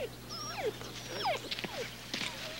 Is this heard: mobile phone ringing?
no